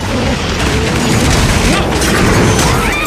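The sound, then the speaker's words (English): A heavy fridge smashes through a window in a loud, continuous crash, with booming low thuds and scattered clattering debris over about three seconds, intense throughout. “Oh, here comes the fridge.”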